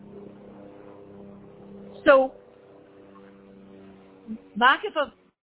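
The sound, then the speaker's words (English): A steady, low droning hum of an airplane passing overhead above a sukkah runs through the whole stretch, while a man speaks a few short words over it. “there's an airplane now going out of our reach, over, right? Over the sukkah now is an airplane going right now.”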